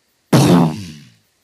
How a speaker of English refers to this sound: Gesundheit. Sorry about that.